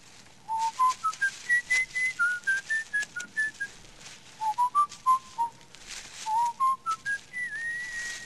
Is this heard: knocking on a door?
no